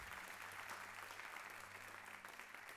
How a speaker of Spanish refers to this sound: Dale un fuerte aplauso al Señor si tú lo crees.